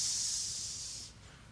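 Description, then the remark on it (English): A person hisses like a snake, one long, steady, breathy hiss held for about a second, fairly loud before it trails off, with no talking. “Some of you think your boss is a snake right now. You thought I was doing that for you.”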